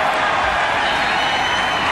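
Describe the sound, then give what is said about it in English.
A stadium crowd roars and cheers after goalkeeper Mark Bosnich scores a penalty for Australia, making it 13-0 against the Solomon Islands, a loud, dense, continuous wall of voices that holds steady throughout with no single voice standing out. “Well, this has brought the crowd to life all of a sudden.”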